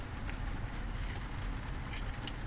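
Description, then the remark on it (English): Pouring rain makes a steady, dense wash of noise with a heavy low rumble and a constant hiss above it, unbroken for the whole moment, with no one talking. “But it is pouring rain, and I've never done.”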